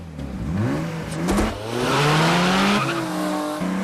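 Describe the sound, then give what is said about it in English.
A car engine revs hard during a car chase in the film Ronin, its pitch climbing and shifting through gears, with screeching tires and rushing road noise. Loud, with no voices. “Another film that has a lot of car chases going on in it is Ronin.”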